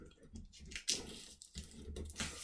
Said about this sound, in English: That was it. It's like opening a bottle of lemonade. Such a depressing noise. Might as well be a pound of pop. Awful, yeah.